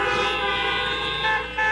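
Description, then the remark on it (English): Several car horns honk together in a loud, sustained chorus, their overlapping blasts blending into one continuous blare that holds steady for the whole moment. “Honk your horn if you've ever cried to God about something.”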